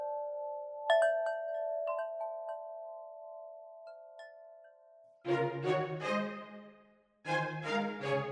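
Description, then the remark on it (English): A Wind River wind chime rings outside an office window: a few clear, sustained metallic notes struck at uneven moments, overlapping and slowly fading, before a person starts talking. “It's actually chiming at me right now. I have one right outside my office.”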